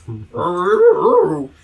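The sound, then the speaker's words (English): A person mimics a cartoon dog: a quick yelp, then a drawn-out, warbling bark-like howl, voiced fairly loud. “Woof, woof, woof. Do your Scooby.”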